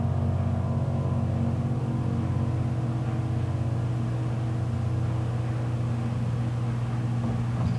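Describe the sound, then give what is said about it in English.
A clothes dryer drying clothes runs with a steady, low mechanical hum and droning rumble that holds an even level throughout, with no voices present. “Yeah, you know, you hear the dryer in the background.”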